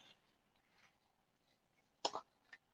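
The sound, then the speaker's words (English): A dirty headphone is clicked twice while someone tries to get it to charge and to get earwax out: a sharp, louder click, then a softer one about half a second later, with faint quiet handling noise before them and no talking. “Can you hear me clicking it? Yeah, I can, but what are you doing to that thing?”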